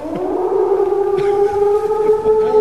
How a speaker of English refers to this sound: That wolf is getting a little too close for comfort.